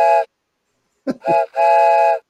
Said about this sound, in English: I was way late on my train whistle button. I'm sorry.